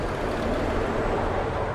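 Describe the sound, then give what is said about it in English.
A lorry rumbles past outdoors, a steady, loud low-pitched engine and road roar filling the whole moment without easing off, with no voices. “Because as in between performances, as a lorry drives past”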